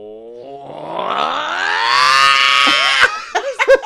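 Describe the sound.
A single voice imitates the THX deep note, a cinematic swelling chord, starting low and rising into a sustained, harmonically rich roar that builds in loudness for about three seconds before breaking off into brief vocal sputters.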